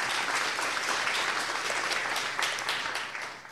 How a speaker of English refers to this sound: Thank you. Quick round of applause for all the speakers. Woo.